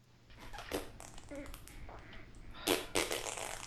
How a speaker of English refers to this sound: But that's juxtaposed with the sounds of flatulence and a guy shitting in the background.